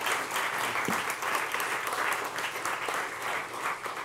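Steady applause from a crowd, a dense wash of overlapping claps holding at an even level for about four seconds without any voices.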